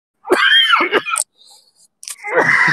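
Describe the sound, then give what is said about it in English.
A person coughs loudly and harshly in two bursts, the first drawn out with a strained, moaning edge, then a short quiet pause before another rough cough. “I actually kind of like it when it's just me and you when you cough.”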